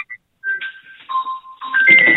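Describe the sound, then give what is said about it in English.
A musical mobile phone ringtone, not the phone's typical default ring, plays for an incoming call: a simple melody of sustained electronic notes that step between pitches, swelling into a louder, busier passage at the end, with no voices. “Doesn't just have the typical, you know, ring that comes with the phone now.”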